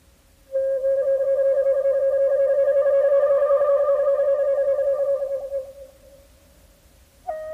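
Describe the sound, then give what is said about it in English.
A bamboo flute holds one long, breathy note with a rapid fluttering tremble, the koro koro technique imitating the voice and wing flapping of cranes, loud, then fades out before a new note begins. “That flutter you hear on the bamboo flute is called koro koro, and it's meant to imitate both the voice and the wing flapping of the birds.”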